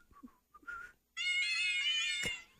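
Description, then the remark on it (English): Synthetic cat meows from a newly downloaded cat piano app played as a tune: a few quick, short meow notes, then one long, bright held meow that stops abruptly, fairly loud with no talking. “I just downloaded a cat piano so I could play …”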